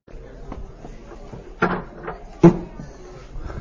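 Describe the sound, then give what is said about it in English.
The wooden door of the ark closes with two solid knocks about a second apart, fairly loud, over a low murmur of room noise and faint voices, at the Cathedral Church of the Advent in Birmingham, Alabama. “Close the door to the ark.”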